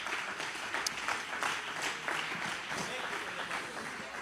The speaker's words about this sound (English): Can somebody clap your hands to the Lord right now?